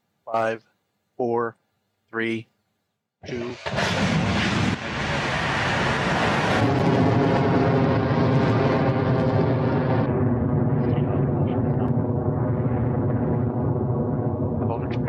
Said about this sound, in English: 5, 4, 3, 2. And away we go. Our 23rd Electron launch vehicle is off the pad and on the way to space for this mission and progressing well on its journey to low Earth orbit.